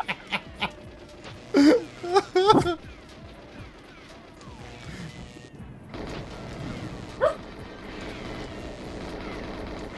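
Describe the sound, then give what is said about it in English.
A dog named Sandy barks a few times in quick, loud bursts near the start, over a busy backdrop of video-game sound effects and low rumbling ambience. “Sandy's barking at them.”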